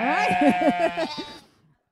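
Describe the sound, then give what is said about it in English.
Several goats bleat in a quick, overlapping burst of wavering, nasal cries lasting just over a second, then fading to near silence. “No, a bunch of goats.”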